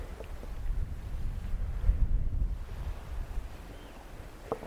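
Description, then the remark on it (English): Gentle waves lap steadily against a shingle shore on Kemlin Bay, a soft washing surge that swells and eases over low, rumbling wind noise, with no voices. “You can hear the waves lapping on the shore.”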